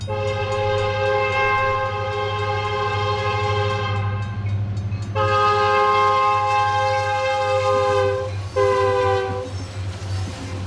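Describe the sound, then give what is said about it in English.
A freight train rolls past behind a motel, its horn blaring in long sustained blasts with brief breaks, over a steady low rumble of engines and wheels. “Turns out a freight train runs right through the backyard.”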